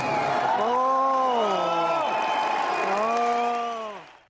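A large crowd at a band's concert in London, the last stop of the tour, lets out a loud, drawn-out collective groan of disappointment on hearing it is the band's last show, a long sinking "awww" that swells again over steady crowd noise before fading out.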